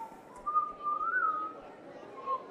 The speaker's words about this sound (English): What the hell do you think you're doing? What? You were whistling.